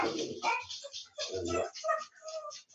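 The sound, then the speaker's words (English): Dogs barking in a few short, overlapping bursts, mixed with yips and whiny tones, at moderate volume, with no talking over them. “Listen, my dogs are barking.”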